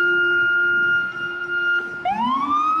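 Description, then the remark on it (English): A loud siren in a big city holds a steady high tone, then dips and sweeps back upward in a rising wail, over a low rumble of traffic. “Hear that siren?”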